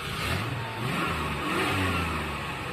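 A car engine revs and accelerates, its loud, steady roar rising and dipping in pitch as the car resumes driving itself, with no voices over it.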